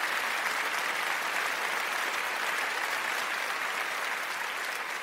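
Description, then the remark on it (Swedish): An applause sound effect of a crowd: steady, dense and continuous clapping that holds at an even, fairly loud level for the full five seconds with no voices over it. “Kan vi få såna här applåder som Robin och Johan sätter in?”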